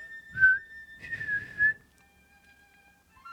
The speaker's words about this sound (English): That is probably the best thing to whistle. That was demonic. That's probably the best thing to whistle if you can.